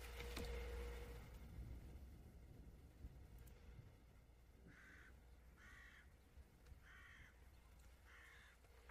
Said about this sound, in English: They hear a bird.